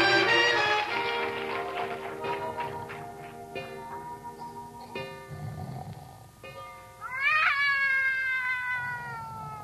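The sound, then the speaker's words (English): Several cats yowl and caterwaul in drawn-out, wavering wails that overlap and rise and fall, loud, with a sharp rising howl near the end and no talking. “Did you wake me up so I could listen to that cat concert?”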